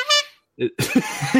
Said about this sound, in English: I was hoping for a better air horn. You let me down.